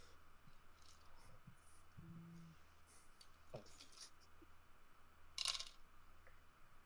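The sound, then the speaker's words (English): Five dice rolled on a table for a damage roll in a tabletop game: a quick, single rattle of small hard objects clattering near the end, otherwise quiet with a low steady hum. “Okay, could you roll me 5 dice, please?”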